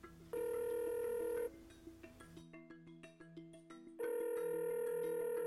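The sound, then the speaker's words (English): A phone rings out on an outgoing call to the crew chief for racer Bryan Smith, an Oklahoma City phone call, with two steady electronic ring tones separated by a short run of quick beeping notes. No one speaks. “Call him up. Let's do it.”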